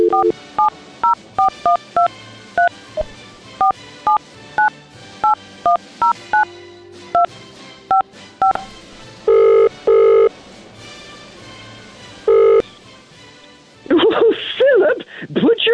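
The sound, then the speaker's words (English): A quick run of about seventeen touch-tone beeps as a number is dialed, then two long ringing tones on the line, followed by a voice answering over the phone. “Back on, the phone is ringing.”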